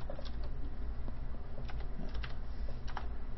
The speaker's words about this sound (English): Don't you just dial the number? Yeah, there's a certain way you got to do it.